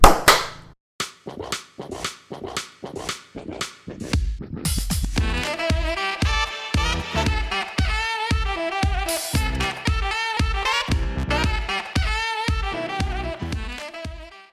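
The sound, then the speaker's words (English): A quick, steady run of about a dozen sharp hand claps, then a loud music track with a punchy beat and melody takes over, and clap-like hits continue within it. “In 5 years, when this podcast is bigger than Joe Rogan, the clap will be an icon.”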